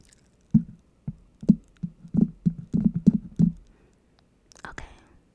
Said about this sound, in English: I wonder what happens if I were to just start biting the microphone.